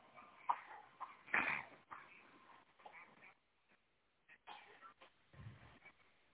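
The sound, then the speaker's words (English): A three-year-old child standing right by the speaker coughs in a series of harsh, irregular bursts, one loud fit early on followed by quieter, scattered coughs. “I hope you guys don't have hear my three-year-old who's standing right by me coughing his little brains out.”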